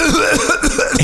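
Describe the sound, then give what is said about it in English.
A quick run of harsh coughs, about five or six in rapid rhythm, loud and throaty with some throat-clearing rasp, with no talking; the coughing imitates Hillary. “The reason I'm coughing is I'm doing the Hillary thing.”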